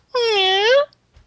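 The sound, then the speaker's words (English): A voice imitates a creaking door swinging open: one drawn-out, strained, whiny tone lasting under a second, fairly loud, with its pitch wavering slightly before cutting off. “That was me opening the door.”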